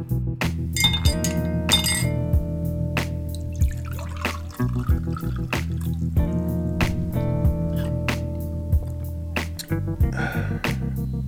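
Glasses of Booker's straight Kentucky bourbon clink together in a toast: several sharp, bright taps whose ringing tones linger, fairly loud, with no voices.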